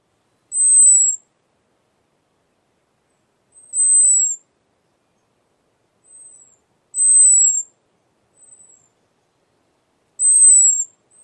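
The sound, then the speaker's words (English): A very high, thin down-slurred bird alarm call repeats about every three seconds, four clear notes with a couple of fainter ones in between, against silence. “They also have a very high, down-slurred call that sounds like this.”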